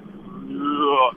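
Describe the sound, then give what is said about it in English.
A car engine drones steadily from inside a moving vehicle, its hum rising in pitch and growing louder toward the end as if accelerating, with muffled voice-like sounds mixed in. “We can hear your car in the background.”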